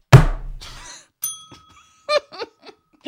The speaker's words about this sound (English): It's a terrible bell as well. It's a really terrible bell.